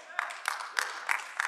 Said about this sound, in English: Now, I know some of you, I know there's about 16 of you that just clapped right there.